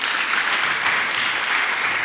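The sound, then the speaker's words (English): A crowd of people clapping for Jesus during a sermon, a dense, steady wash of applause that stays fairly loud and even throughout, with no voices heard over it. “Clap for Jesus.”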